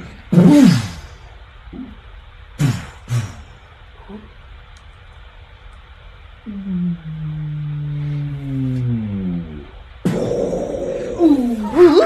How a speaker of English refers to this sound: as this large slab of stone falls before you, the horns give way, and it didn't open, it literally just fell down. It literally boom as the stone falls behind you.